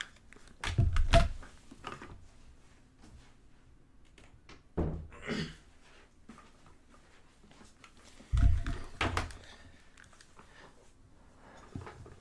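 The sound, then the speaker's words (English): A door is handled and shut: three separate bursts of clunks and low thuds, a few seconds apart, with faint rustling and quiet stretches between them and no talking. “I'm going to close the door real quick.”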